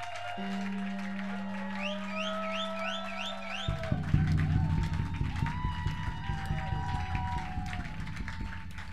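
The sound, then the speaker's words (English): An audience claps to appreciate God, breaking into dense, sustained clapping that swells after a sustained low tone fades, the many hands blending into a steady, crackling roar that carries on to the end. “If you want to clap, don't pretend. Clap.”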